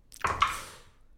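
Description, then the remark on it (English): Dice are rolled onto a hard surface during a tabletop role-playing game: two quick knocks with a bright rattle, fading over about a second. No one speaks. “Let me roll some dice.”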